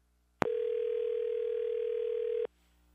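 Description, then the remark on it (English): A single steady telephone ringback tone sounds for about two seconds as a call is placed to a man on his birthday, clear and fairly loud, starting and stopping abruptly with silence on either side and no voices. “I got his number. Here All we right, go. Here we go. It's ringing here.”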